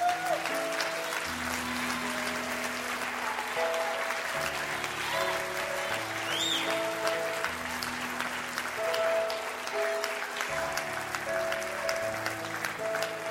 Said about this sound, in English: Anybody want to praise him right now and clap your hands?